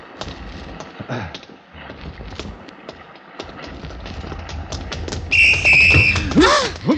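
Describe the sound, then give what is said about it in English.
A loud, shrill whistle blast cuts through a busy, clattering background, blown by a man doing wind sprints around a ship's deck, followed right away by a sharp thumping crash as he collides with a woman. “I blew my whistle, but I guess you didn't hear it in time.”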